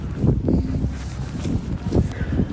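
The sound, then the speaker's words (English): On a windy night outdoors, on the street outside a closed restaurant on South University Avenue, wind gusts buffet the microphone in a steady, low rumbling roar, swelling and easing over a couple of seconds, with faint scuffs like footsteps mixed in. “Apologies in advance, it was kind of a windy night.”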